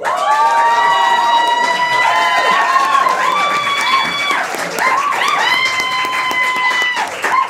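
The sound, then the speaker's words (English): An audience at the D&C stage cheers loudly and steadily, with many overlapping whoops and high shouts over a bed of clapping that lasts the whole stretch without letting up. “You definitely seem to have brought some fans along.”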